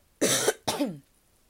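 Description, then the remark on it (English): Two loud coughs in quick succession, the first harsher and longer, the second trailing off with a slight voiced rasp, followed by silence. “I have to cough.”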